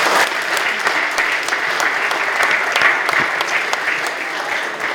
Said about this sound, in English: Thank you very, very much indeed. Big round of applause.